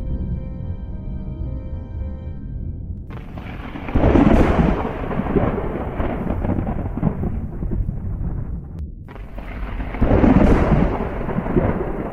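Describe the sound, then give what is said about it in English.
Two loud thunder cracks, about six seconds apart, each bursting out and rumbling over a steady wash of heavy rain, with a low storm roar continuing throughout. “Just shoot off a lightning bolt, and then I'm going to jump the portal.”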